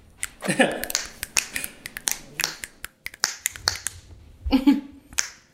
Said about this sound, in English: Okay, now we're gonna snap.